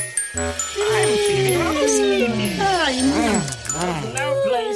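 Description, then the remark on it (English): A puppy yips and whines in a string of short, high, bending cries, fairly loud, over a steady backing tune with a light jingling sound. “Eight poppy seed cakes. Puppy.”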